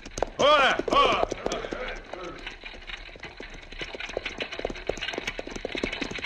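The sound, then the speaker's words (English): Horses' hooves clop in a steady, quick rhythm as horses pull an approaching buckboard wagon toward dusk, with a brief whinny-like cry near the start and the hoofbeats continuing fairly loud throughout. “There they come now on the buckboard.”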